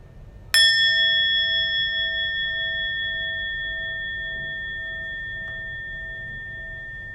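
A single meditation bell is struck once, its bright metallic tone with several clear overtones ringing out and slowly fading over several seconds, with no voices.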